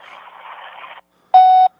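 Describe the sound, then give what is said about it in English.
A second of soft hissy phone line noise, a short pause, then a single loud, steady electronic beep lasting about a third of a second, the voicemail tone after the greeting that signals recording has begun. “I went straight to voicemail.”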